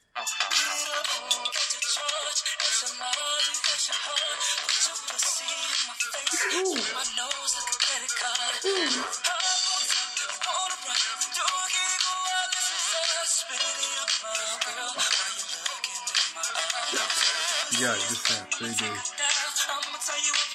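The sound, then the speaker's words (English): A phone ringtone, the one that plays when a particular person calls, plays a loud, dense song continuously for about twenty seconds, bright, with no talking over it. “You want to hear what happens when she calls my phone, PJ?”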